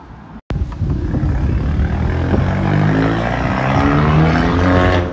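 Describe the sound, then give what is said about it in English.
A loud motorbike engine roars for several seconds in Bristol, its droning pitch shifting slightly as it passes, with no one talking. “Motorbike.”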